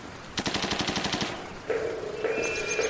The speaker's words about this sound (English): Danger! Danger. Gunshots. That sounded close.